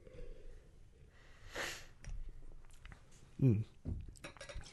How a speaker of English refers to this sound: A bigger sip like that. It's actually weirdly a little bit less cohesive.